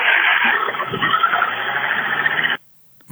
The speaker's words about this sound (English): That sounds like a toy lawnmower. Was that a toy chainsaw? Whatever it was, it sounds like that guy's in trouble.